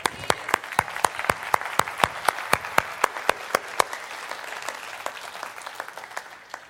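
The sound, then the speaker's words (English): A crowd claps together in a steady, brisk rhythm to praise the Lord, sharp unified claps over a dense wash of scattered hand noise, gradually loosening and fading toward the end. “Now we need to clap for the Lord.”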